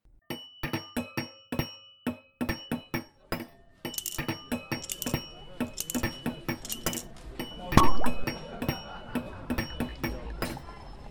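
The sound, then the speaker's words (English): Repeated bright clinks of glassware ring out in a quick, irregular rhythm, like glasses touching and being handled, with a busier clatter and faint background murmur building in the second half. “But now, please grab a glass, get comfortable, and listen how today's ghosts get out of the bottle.”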